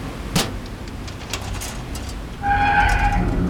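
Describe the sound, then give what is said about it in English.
A sharp metallic snap and a few scraping clicks as a container's truck seal is forced with a multi-tool, then a steady, high metal screech as the container door grinds open on a cargo ship, with no voices. “the container lock is just a truck seal, not a crossbar lock. I think I can get it open with my multi-tool.”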